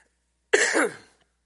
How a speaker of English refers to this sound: I'm so sorry, I'm coughing.